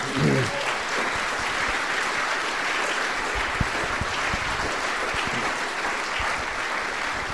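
An audience breaks into sustained applause, a dense, steady patter of many hands clapping at an even loudness for several seconds. A brief voice is faintly heard at the very start.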